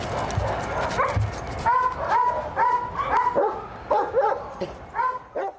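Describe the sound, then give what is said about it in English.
A search and rescue dog of the Vancouver Fire Rescue Service's Heavy Urban Search and Rescue Team barks repeatedly in quick, excited bursts during a canine training exercise, fairly loud, with about a dozen sharp barks following a short stretch of rustling background noise. “Canine training is a top priority for the Vancouver Fire Rescue Service and the Heavy Urban Search and Rescue Team.”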